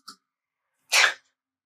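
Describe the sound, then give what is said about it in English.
One forceful sneeze: a short, sharp burst of breathy noise lasting about a third of a second, preceded by a faint brief intake and followed by silence, with no talking. “I have to sneeze.”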